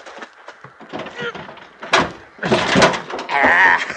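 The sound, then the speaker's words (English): The stuck metal baggage-compartment door of a wrecked plane, half buried in loose rock, is wrenched and scraped open in a few hard, rattling bursts, with creaking and clunking. Straining voices and grunts can be heard along with it. “In the baggage compartment. I go pull the door open.”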